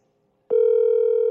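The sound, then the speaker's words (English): A phone call's ringing tone plays from a phone on speakerphone held near the microphone: after a brief quiet moment, a steady, slightly tinny electronic tone starts and holds loud and unbroken to the end, with no voices. “Put the phone near the mic and put the mic so we can hear you. Durr. Can you hear it ringing?”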